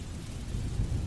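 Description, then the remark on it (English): A thunderstorm with a deep, continuous rumble of thunder over steady rain noise, heavy low-end energy swelling slightly toward the end, with no voices present. “Six months have passed, and thankfully the lady never came back. But the storm did.”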